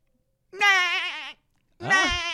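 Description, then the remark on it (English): A person's voice, attempting a SpongeBob voice impression, gives two wavering, sheep-like bleats, the first about a second long and the second shorter after a brief pause. Both are loud, with no other talking. “What the fuck is that? You sound like a sheep.”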